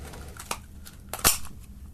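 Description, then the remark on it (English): Paper crinkles and rustles as an old-school Christmas cracker is tugged, a small crack first, then a sharp, bright snap as it pulls apart, followed by more rustling. “Do me cracker then”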